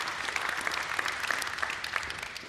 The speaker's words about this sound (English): Can we give this guy a clap? That is no easy feat.